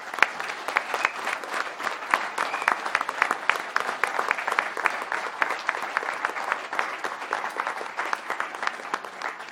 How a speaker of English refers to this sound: But a massive thank you to Ed Tracker and Old One Productions for being our main sponsors for this game. A round of applause for those guys.